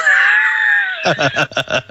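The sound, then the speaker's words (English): A voice imitates strained, choked yelling: a drawn-out high wail for about a second, then a string of rough, choppy vocal bursts, like someone shouting while trying to hold back tears. Loud. “and he's like yelling and and trying not to cry. And then when he does cry, it just comes out in this horrible burst.”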